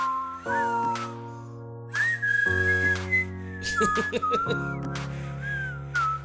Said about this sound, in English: Can't whistle. I can't whistle either.